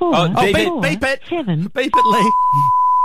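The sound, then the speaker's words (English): A voice on a phone call says "you have reached the message bank" for about two seconds, then a steady, clear electronic voicemail beep tone sounds and holds for over a second, briefly overlapping a last bit of speech. “Come on, you have reached the message bank. Ah, voicemail.”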